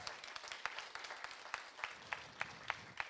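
A crowd applauds with steady, dense clapping, sharp individual claps popping out above the wash of hands at a fairly even pace, moderately loud and without any talking.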